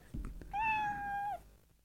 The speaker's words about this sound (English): That one might be a cat. Dying. Yeah, it says I'm gonna be a cat dying.